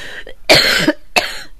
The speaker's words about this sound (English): Whereas I have to cough.